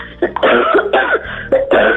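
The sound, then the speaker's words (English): A series of harsh coughs from a person still getting over the effects of COVID comes in rapid bursts, four or five hacking spasms in a row with only brief pauses between them, loud and raspy with no talking. “Please forgive the coughing.”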